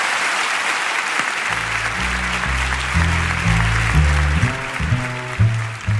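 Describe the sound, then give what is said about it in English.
An audience gives sustained, dense applause for the evening's speaker, a steady wash of clapping filling the whole stretch. After a second or so, low instrumental music with shifting notes begins playing beneath it. “You've given us a fantastic explanation of what's going on around the world, and I hope everyone will join me in giving an enormous round of applause.”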